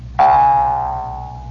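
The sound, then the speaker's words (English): A single twang from a Jew's harp rings out sharply, then holds a steady buzzing metallic tone, the instrument's natural note, that slowly fades over about a second, with no voices. “Now, that's the natural note of this Jew's harp.”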